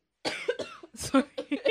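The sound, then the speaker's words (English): A rapid series of harsh coughs, several short bursts in quick succession with brief catches of breath between them. “Sorry, I'm coughing a bit.”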